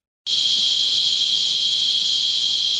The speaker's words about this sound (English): Cicada insects buzzing. The sound of the insects is locally believed to signal rain. But ironically, here in the Hwange National Park, there is no sign of that happening soon.